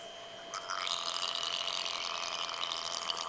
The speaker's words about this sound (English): Beluga sound.